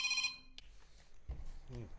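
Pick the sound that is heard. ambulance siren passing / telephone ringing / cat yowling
telephone ringing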